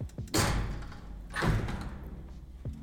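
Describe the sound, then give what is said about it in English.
A heavy studio door swings shut, with a rushing sweep and thud followed by a second dull thump as it seats, then a faint click. No one speaks. “You ready to hear this ASMR of the dungeon door closing?”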